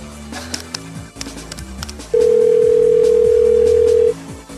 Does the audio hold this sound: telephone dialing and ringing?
yes